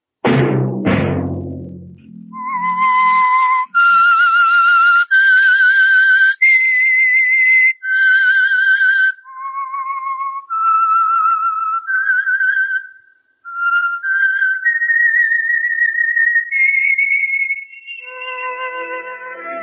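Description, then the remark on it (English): A lone whistled melody, the signal theme of a weekly radio program, with clear sustained notes rising and falling in a slow tune, loud, after a brief low thump at the start; no talking. “Let that whistle be your signal for the Signal Oil program, The Whistler, each Wednesday night at this same time.”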